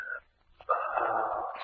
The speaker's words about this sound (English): On the east side, a dying patient gives a last expiring gasp.